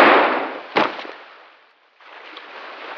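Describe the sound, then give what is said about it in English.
Two loud gunshots, fired by Captain Bucktooth at his own men, ring out less than a second apart, each a sharp crack trailing into a fading rumble, followed by a brief silence and then a steady hiss of noise. No one speaks. “I'm not sure how practical it is to shoot your own men, Mr.”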